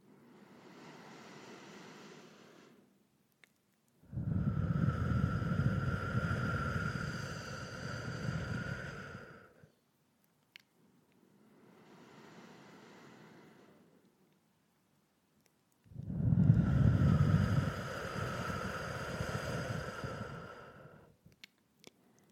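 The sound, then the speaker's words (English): Slow, deep breathing: two full cycles, each a soft, airy inhale through the nose followed by a longer, louder rushing exhale blown out through parted lips, with brief pauses between and no talking. “Take five more of these breaths, feeling and hearing the sound.”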